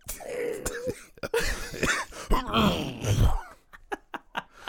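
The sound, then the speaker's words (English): A man's voice mimics Terry's rough, hacking cough as heard on Beyond the Mat, drawn out with groaning, throaty strains before trailing into several short, sharp bursts. Fairly loud, with no words spoken. “I could just imagine Terry's cough because, like, you can hear it on Beyond the Mat.”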